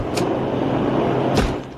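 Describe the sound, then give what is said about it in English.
A door opens and, about a second later, closes again. Each movement is a short, sharp burst heard over a steady, loud rumble that sounds like a vehicle or engine. No one speaks. “Here, step outside this door.”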